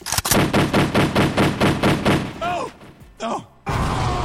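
A rapid string of loud gunshots, about a dozen cracks fired in a steady, even rhythm, then a couple of brief vocal cries and a rush of noise after the firing stops.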